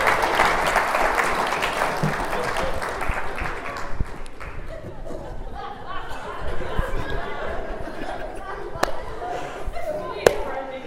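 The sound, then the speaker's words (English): A crowd applauds the volunteers of a cookie-baking demonstration steadily for several seconds, dense clapping that gradually thins out, with murmured chatter and a few sharp knocks mixed in as it fades. “Everyone give a round of applause for our volunteers.”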